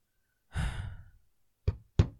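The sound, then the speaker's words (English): A heavy sigh-like exhale, then two sharp knocks on a door in quick succession, each with a short hollow decay. No one speaks. “She glares as someone knocks on the door, breaking her focus.”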